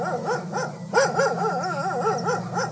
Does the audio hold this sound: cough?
no